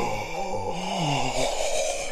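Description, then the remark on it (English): A voice imitates heavy, wheezy asthmatic breathing like the Riddler, a continuous raspy rasp with a wavering groan running through it for a couple of seconds. “You'll be like the Riddler with the breathing like when you're doing it.”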